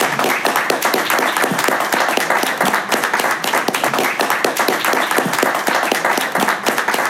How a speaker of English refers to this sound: So a big round of applause for Sheila. Thank you.